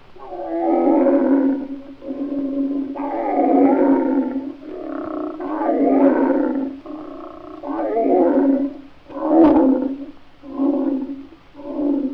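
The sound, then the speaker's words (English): A voice imitates the roar of a lion with a series of about eight loud, drawn-out, moaning growls, each swelling and fading in a steady rhythm, clear. “But they all stopped and became hushed when the king of beasts, the mighty lion, roared like this.”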